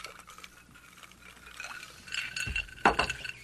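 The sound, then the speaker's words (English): Glasses of Wander North Barrel-Aged Old Fashioned clink together in a toast, a couple of bright ringing taps near the end, preceded by soft handling and rustling sounds with no talking. “So cheers. Good cheers.”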